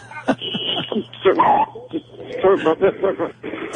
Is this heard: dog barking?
yes